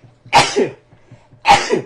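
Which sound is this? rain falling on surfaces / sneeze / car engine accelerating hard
sneeze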